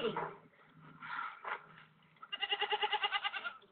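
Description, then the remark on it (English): A person's voice does a loud impression of a goat named Sarah, ending in a rapid, wavering bleat with a quick tremolo pulse, preceded by short voiced sounds. “Did I mention that Sarah was actually the name of the goat? The answer is still yes. And she sounded just like that.”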